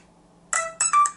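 A mobile phone ringtone starts abruptly after a short quiet moment, playing bright, electronic melodic bursts in quick succession, fairly loud, with no one talking; the phone is being called while outside a microwave oven.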